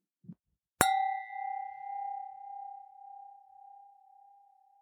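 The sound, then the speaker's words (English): Two ordinary, non-crystal wine glasses bought at a grocery store in France clink once sharply, leaving a clear ringing tone that wobbles and slowly fades over about four seconds; a soft tap comes just before. “The first sound is of two normal wine glasses that I bought at a grocery store in France for about 5 euro.”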